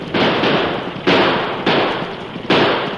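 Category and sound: sound effect, gunshots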